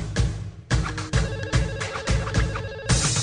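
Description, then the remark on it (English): A pop tune plays in a thin, ringtone-like arrangement, with a steady thumping beat and repeating synth melody, fairly loud and continuous with no one talking over it. “Is that my phone ringing? I don't like this. This is not a good version.”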